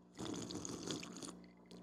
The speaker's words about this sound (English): Let me get a sip of my whiskey here. I need some whiskey.